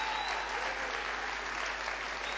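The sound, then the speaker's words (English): A standing church audience claps steadily to honor a couple, a dense, even wash of applause that holds a constant level for the whole stretch without any voices breaking through. “We want to stand up and we want to give her a tremendous clap”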